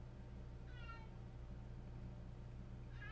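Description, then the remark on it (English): A cat meows twice, a short drawn-out mew early on and another starting at the very end, fairly soft against a steady low electrical hum, with no talking. “I got a cat down here.”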